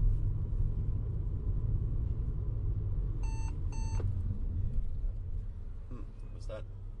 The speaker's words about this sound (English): I imagined was a alert that car in front of me violently brakes, which was the case, but I didn't see it. That's funny, actually. I got this alarm, and instead of looking ahead, I was looking at the dashboard, which is not the appropriate reaction.